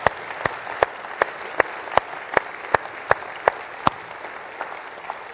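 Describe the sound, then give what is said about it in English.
Steady audience applause for mothers, a dense wash of many hands clapping with a few louder, evenly spaced claps standing out, continuing at an even level throughout with no talking. “The perfect ones and the rest of them, let's show our love, respect, and honor and gratitude one more time, but just give them a warm round of applause.”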